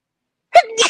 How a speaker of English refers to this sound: Oh, I can't. I have to sneeze.